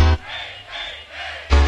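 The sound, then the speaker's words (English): A rave crowd inside the Rave Nation shouts and cheers in three rising swells of massed voices, answering calls to say ho and hey. Loud, booming low-end bursts frame the cheering at the start and end. “Where's the noisy crew? Say ho! Say hey! Come on! Ho!”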